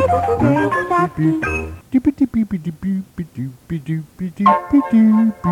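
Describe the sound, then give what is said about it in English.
A bright Mr. Softy ice cream truck jingle melody plays clearly for a couple of seconds, then gives way to a steady stream of sung lyrics about soft ice cream, carried over the tune. “Softy truck with all that great ice cream in that truck would stop by the beach, right at the street in front of the beach, and you'd hear the song of Mr. Softy playing, and that's how you knew the ice cream man was here.”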